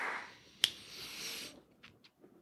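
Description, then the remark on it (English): A single sharp hand clap rings out once, sudden and loud against a soft background hiss, followed later by a couple of faint, brief rustling bursts. “I'm going to clap real quick.”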